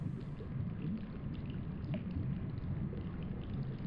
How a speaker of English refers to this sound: I'd like to just sit in a hot spring. Feel the water bubbling around me.